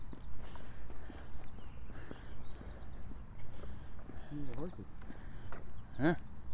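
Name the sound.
horses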